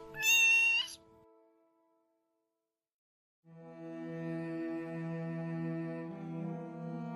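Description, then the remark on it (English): A cat lets out a sharp, loud meow, falls silent for a couple of seconds, then launches into a long, sustained, drawn-out yowl that carries on steadily to the end. “A cat has absolute emotional honesty.”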